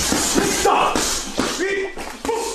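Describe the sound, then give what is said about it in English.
A rapid series of sharp, smacking punches lands about every half second, loud, with muffled voices and grunting sounds between the hits, as 53-year-old boxer Mike Tyson throws punches in a video. “there's a video that came out of Mike Tyson in some shorty shorts recently. I want you to see these punches.”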